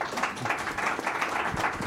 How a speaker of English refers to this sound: Okay. So I'm going to guess the those of you who didn't applaud probably don't applaud at anything.